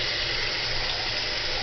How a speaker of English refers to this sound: Here we go. You got to add your water. With the can, by the way. And boiling hot. Straight out.